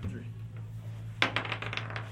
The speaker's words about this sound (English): Roll your die. Roll it. There we go.